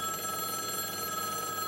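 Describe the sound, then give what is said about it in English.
A telephone rings steadily with a bright, buzzing electronic tone that holds without a break for under two seconds. No voices are present. “He needs Finch, insert shipping noises here, and to figure it out, the phone rings.”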